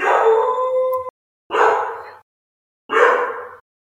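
A puppy named Mr. Wyatt, heard in the background, whines and howls in three fairly loud bursts, a longer tonal cry followed by two shorter, rougher yelps, with brief silences between them and no talking.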